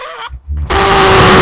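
A loud, sustained squeaky screech of a balloon being rubbed starts after a brief pause and holds a steady, strained pitch to the end, with no talking over it.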